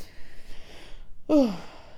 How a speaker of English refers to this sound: Also, excuse me, I'm yawning. It is 9:02. I'm usually in bed reading.